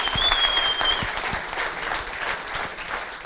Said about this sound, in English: The year we won, it was just like the craziest hockey experience I've ever had. And yeah, just incredible. You can applaud for that one.